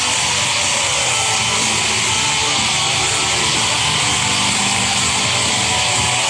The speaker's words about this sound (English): Ridiculous applause. But, you know, that was all part of it. Listen to the cheering. This is the commencement speech of Los Angeles Community College.